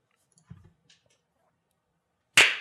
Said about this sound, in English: That was good. That was a good clap.